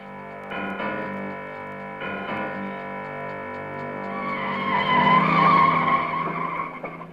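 A car engine revs while tires screech and skid through sharp turns in the rain, the squeal building louder and more sustained toward the end of the run. No one speaks.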